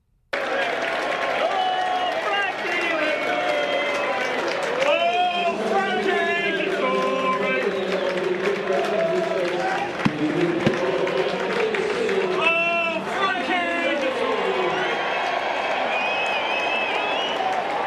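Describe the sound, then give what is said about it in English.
A large crowd at a racecourse cheers and roars continuously for Frankie Dodori as he returns to scale after his farewell ride, with clapping, whistles and rising shouts swelling in waves, loud and dense throughout. “You can hear the crowd. It was like a soccer crowd, wasn't it? Cheering for Frankie on his return.”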